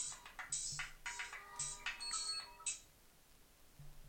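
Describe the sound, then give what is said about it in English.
A mobile phone ringtone plays a quick, bright electronic melody of stacked tones, repeating in short bursts over about four seconds at moderate volume, with no one speaking. “Oh, my phone's just rang.”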